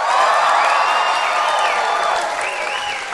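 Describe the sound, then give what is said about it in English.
An audience at a live Do Go On show applauds loudly and steadily, with cheers and a few high whoops rising over the dense clapping, which eases slightly toward the end. “Ladies and gentlemen, give us a big round of applause if you've ever heard our show Do Go On before.”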